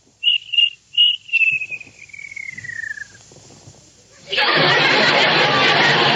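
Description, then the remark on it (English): Three quick, high whistle-like chirps, in the style of a cartoon cricket, trail into a long falling whistle, followed by a sudden loud rush of steady, hissing noise. “Please, Mr. Cricket, George has work to do. Won't you please be quiet?”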